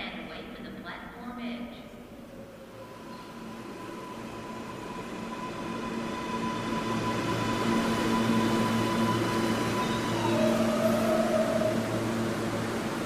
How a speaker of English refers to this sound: Ladies and gentlemen, the next L train is now arriving on the Manhattan-bound track. Please stand away from the platform edge.